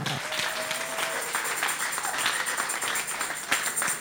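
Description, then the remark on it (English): A crowd claps together as a 'clap offering' to Jesus, in a steady, dense wash of applause that holds at an even loudness for the whole stretch, with a few sharper claps and a faint tone briefly underneath. “And give Jesus a clap offering.”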